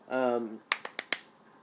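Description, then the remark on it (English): A brief sung note from a single voice, then the singer claps for themself: four quick, sharp hand claps in an even rhythm, crisp and fairly loud, with silence after the last one. “Did you just, like, clap yourself?”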